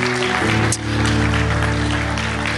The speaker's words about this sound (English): While you're clapping, just by way of celebrating what the Lord's doing, I want to let you know we've had 3 people accept Christ this month so far.